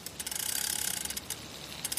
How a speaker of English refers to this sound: He could feel the platform being slowly cranked to the hole in the castle roof, up to where the storm raged, yet he did not feel fear.